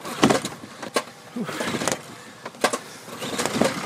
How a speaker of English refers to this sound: Not that easy to start this motor.